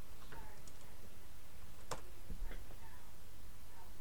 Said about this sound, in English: One sec. You can hear me typing.